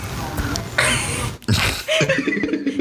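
A couple of harsh, breathy coughs, loud and abrupt, followed by a short stretch of voiced sound.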